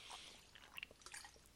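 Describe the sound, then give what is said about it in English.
Quiet liquid sounds of someone sipping water from a glass, with a few soft wet slurps and small drips spread over a second or two, no talking. “taking little pauses for water like I'm about to do right now.”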